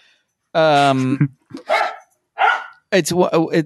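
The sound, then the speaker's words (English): Dogs playing with each other bark in a quick, lively run of about five yaps and woofs with short gaps between them, loud, with no talking over them. “My dogs are now playing with each other too, and the dishes are being put away, so I apologize if any of that's getting picked up here.”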